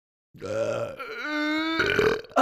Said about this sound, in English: I think if you burp, like, we'll bring him back.